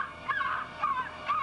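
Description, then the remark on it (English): A person imitates a crow with three raspy, nasal caws spaced about half a second apart, moderately loud, with no talking in between. “Now paw like a crow.”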